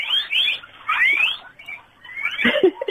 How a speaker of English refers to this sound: This is guinea pigs that are going to talk to us